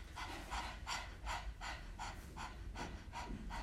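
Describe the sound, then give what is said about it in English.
A person pants rapidly with the tongue out like a dog, doing the breath of fire yoga exercise while seated on a block: about nine quick, breathy huffs in a steady rhythm, fairly loud, with no talking. “We're going to do breath of fire. This is a great way to find your first and second chakras. Stick out your tongue like you're panting like a dog.”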